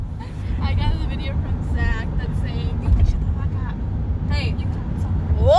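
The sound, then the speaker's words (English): A steady low engine and road rumble fills a moving car's interior as one passenger is driven home, with several voices talking and exclaiming loudly over the drone. “Hey, y'all can't tell, but it was, like, multiple hours passed, and now we're in the car.”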